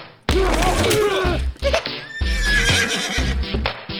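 A horse neighs and whinnies loudly and up close, a long quavering call followed by a second drawn-out whinny, with some dull low thumps underneath.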